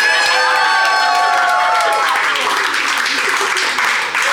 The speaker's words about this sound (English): Listen to that crowd going wild.